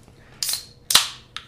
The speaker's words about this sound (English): Go ahead, pop open your drink.